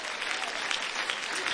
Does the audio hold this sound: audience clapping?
yes